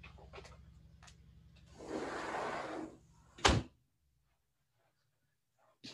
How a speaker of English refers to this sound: So, one second, I'm just gonna close the door here because of the noise.